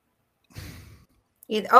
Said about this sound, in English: I hear you breathing.